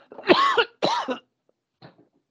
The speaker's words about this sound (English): Why am I coughing?